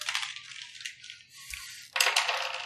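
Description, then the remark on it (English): Dice clatter and rattle across a hard surface in a quick burst, settle briefly, then a second sharper clattering roll follows, fairly loud with no talking, as damage dice are rolled in a 5th edition game. “So I have to roll damage, and for that, I'm going to need one-shot dice.”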